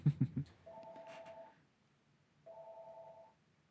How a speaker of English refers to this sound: Sorry, I have a phone call coming in.